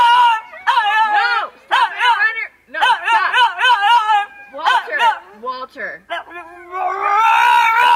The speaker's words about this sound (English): the dog, who's complaining to his owner. Watch this. This is real. Listen to him.